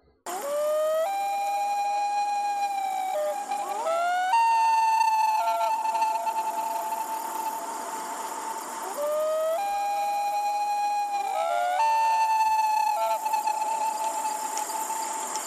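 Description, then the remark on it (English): A common loon's wail, a contact call the birds use to stay in touch across their lake: long, mournful, sustained notes that slide up and break between pitches, repeating in a few drawn-out phrases. It is clear, with no talking. “It's a very mournful cry, rather haunting. The call is often compared to a wolf's howl.”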